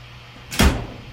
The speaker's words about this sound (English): This is a door or cabinet closing